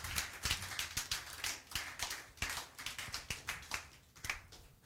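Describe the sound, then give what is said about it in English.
A crowd of people claps for the Lord during a sermon, steadily for about five seconds, a dense, uneven patter of many overlapping sharp claps, fairly quiet overall with no voices over it. “Somebody give the Lord a mighty clap of him.”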